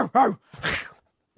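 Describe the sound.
A human voice mimics a dog biting a man in a backyard: two quick, barking yelps, followed by a rougher, breathy snarl-like sound, fairly loud, with no other talking.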